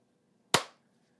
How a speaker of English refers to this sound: And we'll do another clap just so Jordan knows back where we are.